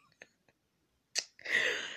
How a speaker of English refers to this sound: Why would I sneeze right before recording?